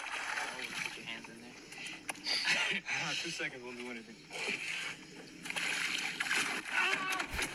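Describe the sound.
Water splashes and sloshes loudly as a man is pulled over the side of a small boat into the water by something that has grabbed his right hand, while excited voices shout and talk over the commotion.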